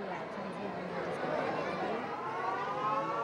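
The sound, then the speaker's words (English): A steady, wailing siren, its tone rising slightly, signals the time to break the fast during Ramadan at a Chishti Islamic shrine (dargah), over the continuous murmur of a large crowd gathered there. “The siren tells the people it's time to begin eating.”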